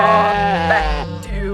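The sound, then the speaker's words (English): A sheep bleats loudly, one long wavering cry that trembles and breaks partway through before trailing off, with no talking over it; a sheep at an animal oddities carnival in Pecatonica. “We also have mutated geese. Genetically altered chickens. And sheep abominations.”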